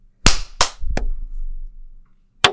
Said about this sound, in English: I clapped and then I realized it wasn't loud enough, so I clapped again myself.